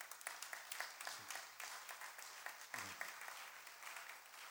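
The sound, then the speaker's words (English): A crowd in an auditorium applauds for Rev. Dr. Deegbe, senior pastor of Calvary Baptist Church, many hands clapping in a dense, continuous patter that holds at a fairly even level for several seconds, with a low hum running underneath and no words spoken. “Deegbe, with a clap of him, let's give it to him.”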